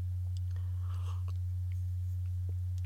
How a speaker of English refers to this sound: So take another sip of my coffee there to get amply caffeinated.